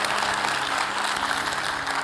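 A crowd claps steadily, a dense, even wash of many hands that holds at the same level for about two seconds, with no voices heard.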